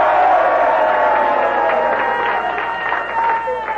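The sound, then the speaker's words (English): A crowd cheers loudly and steadily for the news, a dense roar of voices with some clapping and whoops mixed in, holding at full strength for a few seconds. “By the way, before we go any further, what do you say we give the news a big cheer?”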